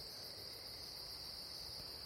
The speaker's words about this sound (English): And then to my left, there's a whistling group. It sounds like a group. If one person's doing that, like, bravo to you, cricket.